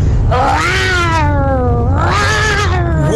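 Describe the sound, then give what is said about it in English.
A child in Cork City imitates a lion's roar with two long, wavering, drawn-out cries that rise and fall in pitch, fairly loud over a steady low rumble in the background. “This is my lion.”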